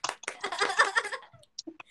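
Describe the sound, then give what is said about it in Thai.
A quick round of hand clapping from several people, a dense patter of claps that swells for about a second and then fades, leaving a few scattered faint sounds. “ปรบมือ”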